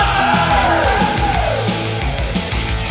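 Loud, dense hard rock plays throughout, with a strained, yelled male vocal riding over distorted guitars and a steady driving rhythm section, full-volume.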